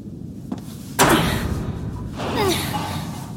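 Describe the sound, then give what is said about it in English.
A faint tap, then one loud, heavy thud against a jammed door up ahead that rings out briefly as someone tries to open it, followed by a softer scraping rattle as the door strains without opening. “That door up ahead looks jammed. Where do I go? Please try opening the door.”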